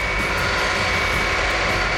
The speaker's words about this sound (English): That's when they heard it. The distant but unmistakable sound of the C-5's whining engines. Gradually, the jet noise got louder until it was almost overhead.